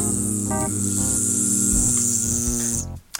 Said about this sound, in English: Bees.